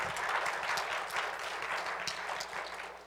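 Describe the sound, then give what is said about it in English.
An audience applauds steadily, a dense wash of many hands clapping at once, holding an even, fairly loud level for about three seconds before easing slightly at the end. “And yes, feel free to applaud.”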